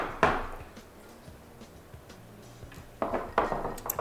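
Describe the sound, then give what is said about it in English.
Glasses clink together in a toast: one bright clink near the start, then a quick cluster of clinks toward the end, fairly clear, with no talking. “So, shout out. Clink, clink.”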